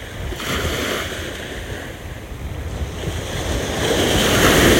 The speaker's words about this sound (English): Enjoying the sound of the waves. For one last time.